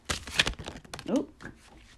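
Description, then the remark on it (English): Tarot cards being shuffled quickly, a dry flurry of papery riffling and slapping in quick bursts, with a brief murmur of voice partway through. “And I'm gonna shuffle very quickly.”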